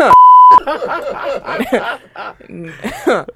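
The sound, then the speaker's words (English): A single loud, steady phone notification beep sounds for about half a second, then voices start talking over each other with bits of chuckling and laughter. “My phone won't let me live.”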